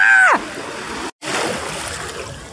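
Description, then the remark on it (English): A short vocal cry opens, then ocean waves splash and wash in a steady, hissing rush that cuts out for a moment before surging back. “Okay, we moved a little further away from the waves.”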